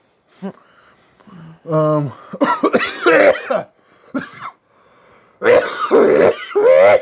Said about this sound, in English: Well, if you like that, check out our other episodes where I cough and hack into the directly into the microphone.